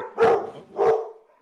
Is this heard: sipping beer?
no